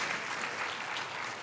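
A group of people clapping together after a Bible reading from Acts, a steady dense patter of applause that holds at an even level throughout, with no voices standing out.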